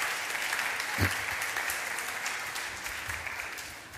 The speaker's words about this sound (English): I think whoever designed this deserves a round of applause.